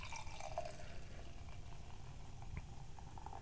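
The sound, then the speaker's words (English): Mission Brewing hard root beer from San Diego, very dark and 7.5% alcohol, is poured steadily into a glass, a continuous gurgling stream with a fizzy, crackling hiss beneath it, fairly quiet, with no voices. “Pour is very dark. And fizzy, like a soda pop.”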